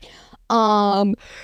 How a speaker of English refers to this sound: sorry, I'm yawning, boring fucking article.